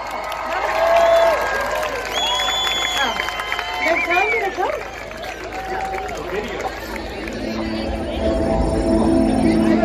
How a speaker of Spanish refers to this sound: Vamos a dejar con ustedes, con un tremendo, tremendísimo aplauso a Alisa Carson.